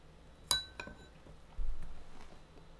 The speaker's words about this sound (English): Hearing me chew can't be exciting.